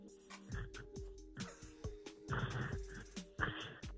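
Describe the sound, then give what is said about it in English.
Harsh, rasping snoring noises repeat in quick bursts, roughly one per second, over a steady low electrical hum, heard over a phone call, with no one talking. “A, if that's a real snore, that's not a healthy one.”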